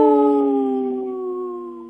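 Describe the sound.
Several people howl together in imitation of wolves, a loud, sustained, wavering group howl that slowly drops in pitch over about two seconds, with no talking.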